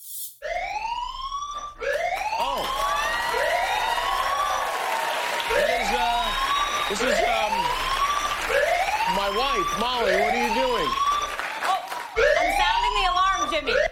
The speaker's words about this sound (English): I didn't know we had an alarm. Oh, we do. I didn't either. It was backstage. Okay. Why are you sounding an alarm you found backstage?